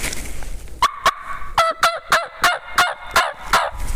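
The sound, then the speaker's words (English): A slate or glass turkey call, yelped in the middle of the call for a deeper tone, sounds a steady series of about eight raspy, slightly flat notes, clear, mimicking a young male turkey (jake). Nobody speaks. “It'll be a little flat, but it'll still sound like a Jake.”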